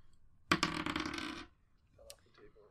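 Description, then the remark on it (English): A bright clatter of dice tumbling across a table lasts about a second, then settles, followed by quiet murmuring voices in the background. It is the first dice roll of the night, made for a perception check in a tabletop game. “First dice roll of the night for me.”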